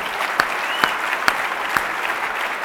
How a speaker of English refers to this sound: Round of applause.